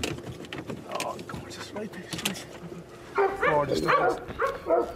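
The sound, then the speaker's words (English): Dogs, including Jack, one of five dogs rescued in County Monaghan, bark and yip in quick, excited bursts, building into a flurry of high-pitched yelps toward the end. “This guy here now, he was one of five dogs that I rescued down in County Monaghan.”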